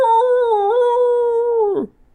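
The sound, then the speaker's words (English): A person imitates a dog with a single loud, drawn-out howling cry that holds steady for nearly two seconds, then drops away abruptly into quiet. “Bark, bark. I'm a dog with a bone.”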